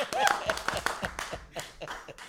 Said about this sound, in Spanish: Un aplauso para el colombiano.